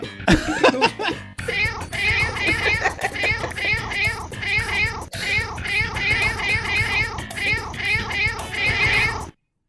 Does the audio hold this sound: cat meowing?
yes